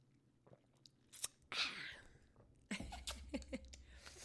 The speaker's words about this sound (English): All right. So I'm going to take a sip.